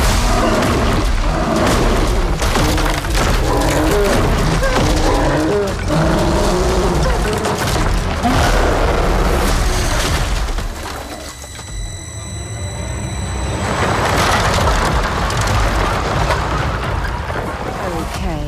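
Loud, chaotic crashing and thudding with rumbling booms and rushing noise, dense, briefly dropping into a quieter stretch with a high tonal whine before the commotion surges back; a bear attacking the lead character in the film Prey, from the Predator franchise.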